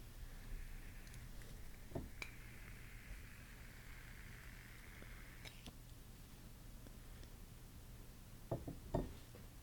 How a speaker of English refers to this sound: we have our candle here. We're going to light it so that it can sit beside our mics for the rest of the episode.